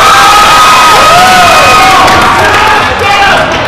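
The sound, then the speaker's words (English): A loud wrestling crowd at Combat One cheering and shouting steadily for wrestler Soda Pop after his arm drag off the top rope, a dense wall of voices with rising whoops and high-pitched yells for several seconds. “Crowd loving it here at Combat One.”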